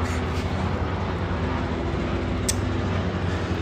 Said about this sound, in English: We're just gonna wait for the helicopter. You guys could listen to it for a second.